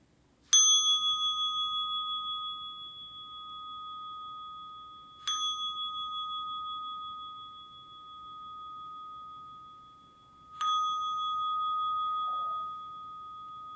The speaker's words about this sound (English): And now listening for the sound of the bell to conclude our practice.